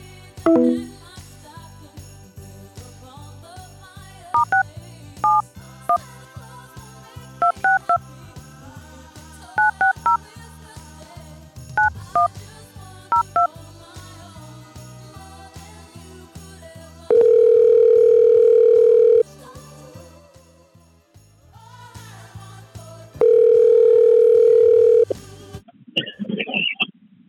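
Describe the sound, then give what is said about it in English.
A run of short, crisp telephone keypad beeps at shifting pitches, followed by two long, steady, loud dial tones separated by a pause, and a brief high tone at the end. “To complete this call, you must first dial a 1 or 0.”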